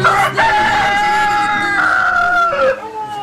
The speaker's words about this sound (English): Good morning, everybody. There's our sick rooster. Been sick for 10 years.